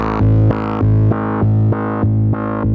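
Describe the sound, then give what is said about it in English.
A loud, buzzy bass tone passed through a filter modulated by a square-wave envelope, jumping between bright and muffled about every quarter second in a steady, choppy rhythm with no talking. “Here's square wave.”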